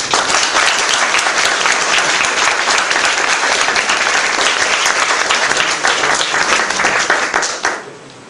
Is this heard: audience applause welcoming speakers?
yes